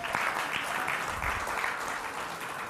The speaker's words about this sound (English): Give her a clap.